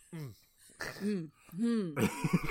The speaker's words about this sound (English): Cough.